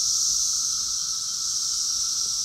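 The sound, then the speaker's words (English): A cicada's mating call: a loud, unbroken, high-pitched hissing buzz that holds steady and even for the whole stretch, with no pauses, pulses or voices. “Their mating calls are thought to sound like a hissing jet.”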